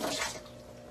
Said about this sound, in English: You can hear it like dripping from the countertop onto the floor.